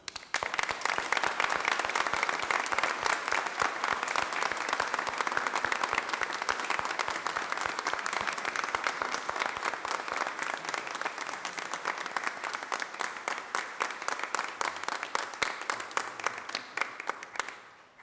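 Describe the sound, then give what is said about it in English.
A standing crowd applauds those who have served their country, steadily for about eighteen seconds, a dense wash of many hands clapping at an even, sustained level before tapering off at the end. “This time, let's stand and give a round of applause for these who have served our country.”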